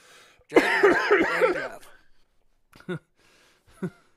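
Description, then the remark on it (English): A raspy burst of coughing and throat clearing lasting about a second, followed by two short, sharp coughs spaced apart, with quiet pauses in between. “Do you imagine, like, editing that cough out?”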